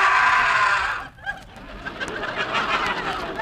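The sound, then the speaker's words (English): A wild, inhuman scream from the captive geek at a carnival sideshow on the Midway, loud and shrill, blares for about a second before cutting off, leaving a quieter hissing background with a few faint, brief squawks. “That scream you just heard was the geek.”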